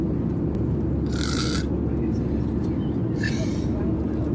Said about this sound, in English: So we're on the plane now. We'd been sat down for maybe 30 seconds before Mum fell asleep. And she's snoring as per usual. Let's see if I can capture some of it because I'm mean.